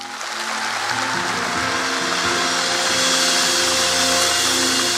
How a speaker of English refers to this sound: We get to glorify the Lord. Oh, praise God. One more time, can we give the Lord a big hand?